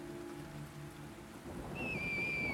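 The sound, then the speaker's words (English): A rumbling, rain-like wash of noise builds until a piercing, sustained eagle screech, an Assassin's Creed eagle noise for a griffin accelerating toward the sky, cuts in for the final second, holding a steady high pitch to the end. “Can I get an Assassin's Creed Eagle Noise, please?”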